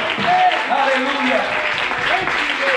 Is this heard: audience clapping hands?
yes